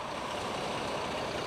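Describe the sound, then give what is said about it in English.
A train departs, setting off for the west toward safer territory, with a steady, dense rumble and a hissing wash of noise that holds at an even level throughout, with no voices. “As the train set off for the west, for safer territory.”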